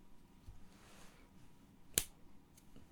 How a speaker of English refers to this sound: That was the softest clap in the world. We'll have to cut that. That's embarrassing. that was a sweaty clap.